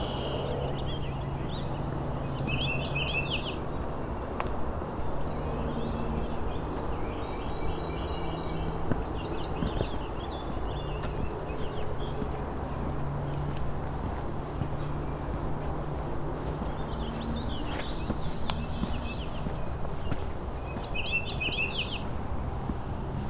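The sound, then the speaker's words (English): Short, squeaky grosbeak calls, no longer singing, come in scattered clusters of high chips, fairly faint, over a steady low outdoor rumble like wind or engine noise, after other grosbeaks have flown off. “There's a little bit of squeaking still going on here, so there might be another one here, but not singing anymore.”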